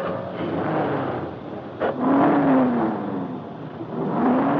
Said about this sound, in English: Hey, go easy. That's a new motor and it's cold. You needn't race it like that.